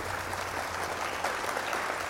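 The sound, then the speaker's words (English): Steady audience applause, a dense crackle of many hands clapping at an even level throughout, with no voices over it. “Ladies and gentlemen, please give a warm round of applause to our guest today”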